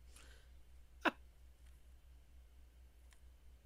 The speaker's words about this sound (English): We got the sound of the clickety clack is me playing with an empty bottle. That was not the same noise.